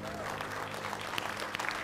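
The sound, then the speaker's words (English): A church audience gives Jesus a hand clap of praise, sustained, dense applause with many overlapping claps blending into a steady wash, a few sharper individual claps standing out, and voices murmuring underneath. “Somebody give Jesus a hand clap of praise in this house.”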